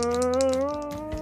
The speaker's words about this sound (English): Okay, Scullin, I'm gonna let you roll 2 20-sided dice and take the better one.